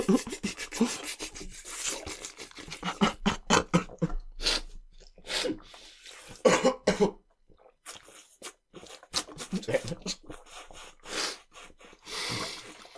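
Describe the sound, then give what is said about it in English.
A bout of harsh, spluttering coughs from someone choking on food comes in irregular bursts, some wet and explosive, separated by brief pauses and scraping, rustling noises, with no clear speech. “Or you could get me to choke on my food.”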